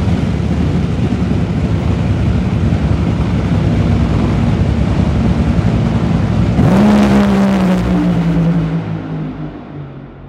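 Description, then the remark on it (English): A funny car blasts down a drag strip in a drag race with a thunderous, roaring engine, its pitch dropping sharply as it screams past near the end, then the roar fades away. “335, folks. We've been seeing that number pop up a lot in the funny car class. So let's listen to this one as well.”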